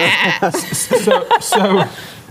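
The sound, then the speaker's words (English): A person does a wavering, nasal bleat imitating a sheep, several quavering pulses over a couple of seconds, fairly loud with a breathy, laugh-like edge. “Can we see the sheep next?”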